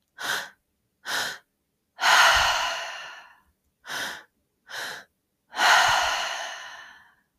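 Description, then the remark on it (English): Audible mouth breathing in a repeating pattern during tri-active breathing: two short sharp inhales, the first into the belly and the second into the chest, followed by a long, loud, sighing exhale, heard twice with no talking. “We'll take 10 tri-active breaths, breathing all through the mouth.”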